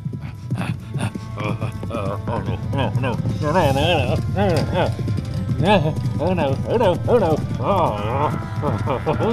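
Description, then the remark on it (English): Horse hooves gallop in a steady, continuous patter, mixed with a constant low rumble and loud wavering voice-like tones that rise and fall throughout the busy scene. “And the kicking of the horse and the vibration caused the helmet to slowly turn around backwards.”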